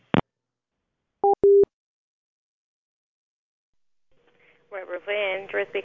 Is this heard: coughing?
no